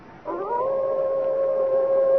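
A single wolf howl rises at the start and then holds as one long, steady, mournful tone, clear, with no voices.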